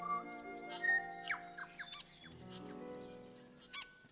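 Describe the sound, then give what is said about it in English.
Several exotic birds call over one another in the early morning, mixing warbling, whistled chirps and sliding tones, with two sharp squawks cutting through. No one speaks, and the chorus stays fairly soft and steady. “I'm up and out early. Exotic birds becoming friends wake me.”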